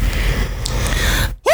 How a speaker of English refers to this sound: Oh, I keep yawning. I've had two beers today.